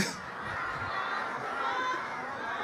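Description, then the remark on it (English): A voice imitates squawking geese, a harsh, continuous run of raspy honks and cries, loud, filling the whole moment without any normal speech. “Same formation of squawking geese fly by.”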